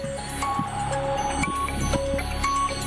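A quiz countdown clock timing a 60-second, 10-question round ticks steadily beneath a busy, droning electronic bed with short repeating tonal beeps, fairly loud and continuous, with no one talking.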